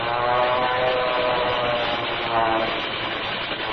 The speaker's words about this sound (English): Hey, look, the second plane has made a dive on them. They're going to it.